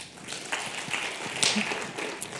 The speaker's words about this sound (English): You now can clap. I want you to clap for the company that you trust the most. You can only clap once, right? So if you think that you trust Google the most, clap now.